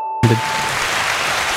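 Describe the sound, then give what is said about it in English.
Hand clapping starts abruptly after a moment of near silence, becoming a dense, steady patter of claps that continues at an even level to the end, with no voices. “thank you for clapping.”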